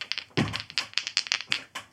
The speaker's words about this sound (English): It's hailing outside, sorry, actually.